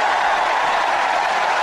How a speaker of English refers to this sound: My gosh. You hear that crowd? I mean, it's just, this is a phenomenon. These rallies that Trump holds are epic events.